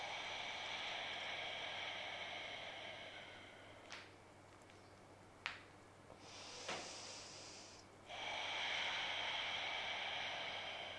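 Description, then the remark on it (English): Slow, audible breathing during a held Warrior One yoga pose: a long airy exhale, a few short sniffs and clicks, then another steady breath of rushing air. No one speaks, and the sound is fairly quiet. “Are you breathing? Focusing on the sound of the breath.”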